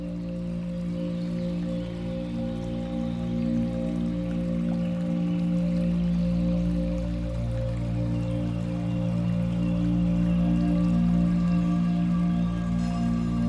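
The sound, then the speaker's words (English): Soft, continuous, gently lapping water with a trickling, dripping texture, steady throughout and paired with a sustained low tonal drone underneath. No voices. “Hear the sounds of gentle lapping water as you go.”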